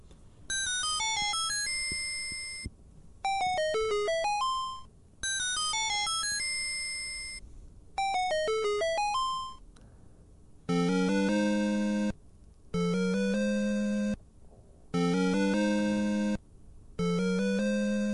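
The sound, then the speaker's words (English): Retro video game door-opening sound effect from the original Dragon Quest, in two versions (NES and PC): four quick, bright descending chiptune beep runs, then four buzzy, sustained lower tones in even bursts, with no talking. “So when it came to like the door opening sound, like that to me sounded way better on the NES.”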